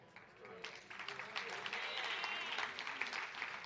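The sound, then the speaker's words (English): A church audience applauds steadily during a sermon, a dense patter of many hands clapping at an even, moderately loud level, with faint voices mixed in underneath. “I bet everyone clapping are volunteers.”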